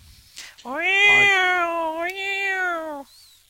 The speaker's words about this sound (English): That really is the cat.